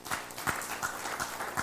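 An audience claps together to God in a steady, unison rhythm, sharp beats about three per second over a dense wash of scattered hand claps, fairly loud.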